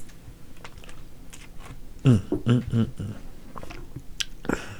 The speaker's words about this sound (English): Had to drink my water. That junk is so good.